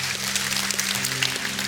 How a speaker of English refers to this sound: Can we just give the Lord a hand clap of praise? Praise the Lord.